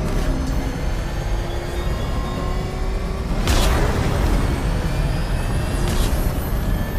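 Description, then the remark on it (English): Loud, continuous roar of racing car engines with whining pitch sweeps as two cars chase the Batmobile through a narrow Gotham street, broken by a sharp crashing impact midway and another burst near the end. No one speaks. “The two remaining cars tail the Batmobile.”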